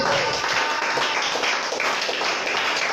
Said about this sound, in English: Come on, clap your hands.